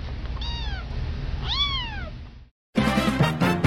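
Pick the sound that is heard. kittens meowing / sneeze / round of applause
kittens meowing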